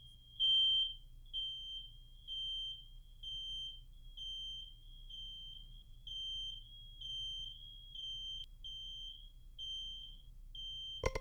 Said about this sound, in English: What happens when it triggers or detects a type of sound recognition, in this case, smoke alarm or carbon monoxide detector going off. All right, here we go with the obtrusive sound here.